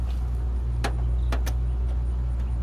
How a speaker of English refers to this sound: Two clicks, we'll hit the lock button.